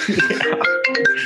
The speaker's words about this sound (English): Somebody's ringing.